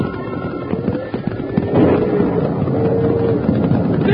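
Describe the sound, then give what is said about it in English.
A loud crack of thunder spooks the cattle on a cattle drive and gives way to a stampede: a dense, rumbling roar of pounding hooves with scattered sharp impacts and drawn-out bellowing rising over it, sustained throughout. “But just then, a big crack of thunder spooked the cattle and a stampede was on, with Jingles right in the path of a big steer gone mad.”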